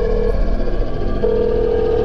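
A phone being dialed: two steady electronic tones, one short and one longer, sound over a loud, rumbling background, with a brief gap between them.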